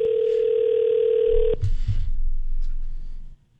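A telephone rings as the X Mornings show places a call: a steady, mid-pitched electronic tone holds for about a second and a half, then cuts off into low rumbling and a few soft clicks.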